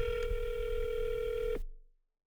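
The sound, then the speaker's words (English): A steady electronic telephone tone from a regular phone call being placed instead of a Wi-Fi call holds for about a second and a half, then cuts off abruptly into silence. It is fairly loud and clear, with no one talking. “Yeah, fuck all that Wi-Fi shit. Like, how come, like, technology's supposed to be advanced. But anyway, like, regular old phone call, that'll work.”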